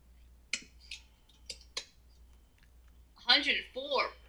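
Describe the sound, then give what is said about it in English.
Four light, crisp taps land at uneven intervals as someone types a Celsius-to-Fahrenheit conversion of 40 degrees into a device, fairly quiet, followed by a short burst of voice at the end. “I'm typing it in right now.”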